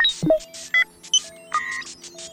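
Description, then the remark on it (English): Robotic electronic beeping and buzzing: a rapid, irregular string of short tonal bleeps, chirps and hissy buzzes, clear, with no one talking. “It was making even more beeping and buzzing noises.”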